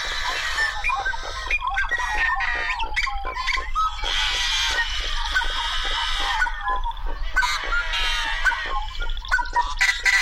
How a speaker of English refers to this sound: Yellow-headed blackbirds just have sort of otherworldly sounds, and they're quite common in some of the cattail marshes.